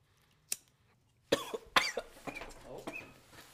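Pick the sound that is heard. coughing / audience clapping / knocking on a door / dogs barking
coughing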